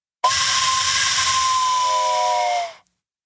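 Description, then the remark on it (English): A single loud steam train whistle sound effect blasts steadily for over two seconds, a breathy, hissing tone with a clear pitched core, then cuts off abruptly. No one speaks over it. “Are you ready to get on the train to the news? How did you not blow the whistle?”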